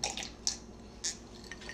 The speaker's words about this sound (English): Excuse me, if you heard me get that sip. You know, I drink my liquor straight.